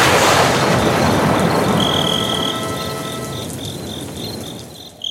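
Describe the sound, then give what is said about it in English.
Crickets chirp in steady, high-pitched pulsing trills over a dense hiss of night ambience that starts loud and gradually fades. No one speaks. “Why did you do crickets?”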